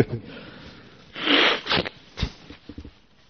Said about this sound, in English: In Buddhism, we have the sound of a conch. It's supposed to be very, very Buddhist. We haven't got a conch here, so I'm blowing my nose instead.